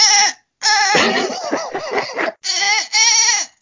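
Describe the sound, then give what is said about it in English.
A person imitates a dolphin with loud, high-pitched squeaky warbles and chirps, delivered in several quick bursts with brief gaps, rough and wavering in the middle stretch. “Can you do a dolphin sound?”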